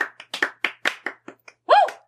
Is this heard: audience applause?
yes